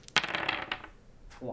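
Special hand-painted dice tumble across a hard surface in a quick burst of sharp clicks and bright rattling, dying away within a second before a voice briefly starts.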